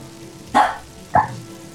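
A dog, Oreo, barks twice, about half a second apart, with short sharp woofs over a low background hum, barking at a backpack up against the wall.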